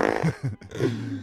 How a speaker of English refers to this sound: Can we add a fart in there? Yes.